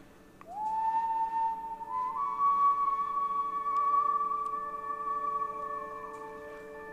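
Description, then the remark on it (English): A person whistles a long, steady note that steps up in pitch partway through and holds for several seconds before fading. Clear, with no talking over it. “I really appreciate the fact that everybody's just listening to whistling.”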